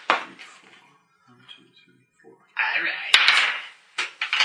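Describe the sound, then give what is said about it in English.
After a moment of faint, muffled talk, dice rolled for initiative in a tabletop game clatter and rattle across a table for about two seconds, with one sharp clack, then a couple of quick final tumbles. “And we'll have initiatives here. As I will try to draw. And this is where we separate the men from the bad dice rollers.”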